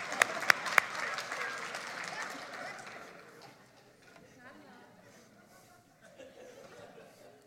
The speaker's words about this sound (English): One clap. Courageous clap.